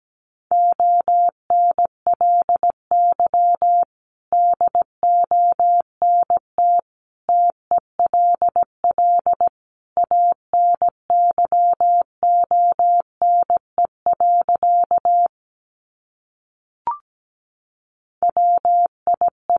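Morse code beeps at about 17 words per minute, sending sentences made from the top 900 words: a single steady mid-pitched tone keyed in rapid dots and dashes, with short pauses between groups and one longer break near the end.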